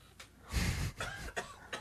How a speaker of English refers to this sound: That's not me coughing, by the way.